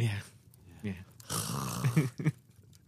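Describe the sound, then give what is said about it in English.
A voice imitates the heavy, rasping mouth breathing of someone resting a remote control on their belly while steering, with a few drawn-out wheezy breaths that build into a loud noisy rush, somewhat like snoring. “It has an electric motor, so you kind of get it sort of in the right place, and then you rest the remote control on your belly and breathe through your mouth going...”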